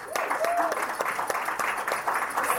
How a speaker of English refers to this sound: A round of applause for Sam and Avita.